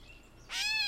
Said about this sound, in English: Next, we're going to profile the gray catbird. This is a widespread and familiar species. The bird is called a catbird for its meow-like call note that we'll listen to here. Meow.